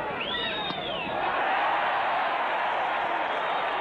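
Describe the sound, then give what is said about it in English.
A ballgame crowd roars in a steady, loud wash of cheering, with a few sharp whistles and whoops rising over the noise in the first second before the roar swells and holds. “You know, when I hear that, I just keep thinking, man, wouldn't it be nice to be one of those guys that they're cheering?”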